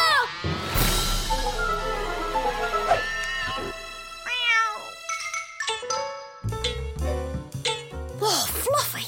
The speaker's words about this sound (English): Meow. This is easy. Meow.